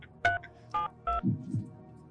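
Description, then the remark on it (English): Three short electronic keypad beeps from a phone being dialed, evenly spaced, followed by faint low murmuring in the background. “Can we call through? Do you know how to call through?”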